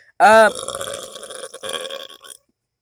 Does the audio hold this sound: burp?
yes